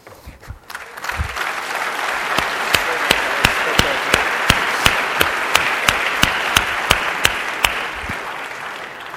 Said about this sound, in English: So on behalf of BASIS, SCVP, and the ASSU Speakers Bureau, we'd like to thank Steve for coming today, and just one more round of applause for an awesome talk.